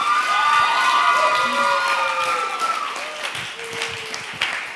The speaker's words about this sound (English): You guys can go back to your seats. Let's give them another big round of applause, you guys.